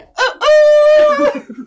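A rooster crows once, loud and close: a short opening note, then a long, drawn-out, strained call that fades into softer low clucking sounds.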